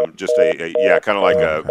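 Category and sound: signal or alarm, telephone busy signal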